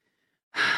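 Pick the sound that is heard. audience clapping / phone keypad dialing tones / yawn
yawn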